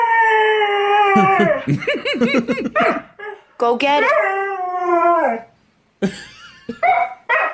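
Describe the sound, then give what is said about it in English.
A dog howls and whines in long, wavering, drawn-out bursts, loud, arguing back at a person who scolds it for stealing a shoe between the cries. “Then there's a video of Mikey a dog arriving”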